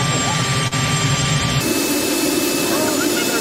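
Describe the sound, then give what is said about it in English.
A helicopter engine runs loud in a steady, unbroken roar whose tone shifts abruptly partway through, with indistinct voices mixed into the noise. “It's just the helicopter going.”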